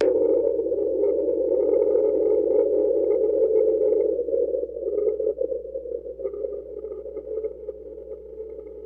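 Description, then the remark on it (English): An underwater hydrophone recording known as "The Train": a steady, loud low drone that holds an even pitch throughout, growing slightly rougher and more uneven in the second half. No voices are present. “There's another one called The Train. I'll play it.”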